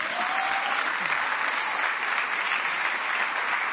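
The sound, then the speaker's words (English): A church audience clapping together during a morning service in steady, dense applause, a continuous wash of many hands that holds an even loudness throughout, with no voices standing out. “I don't want you to clap.”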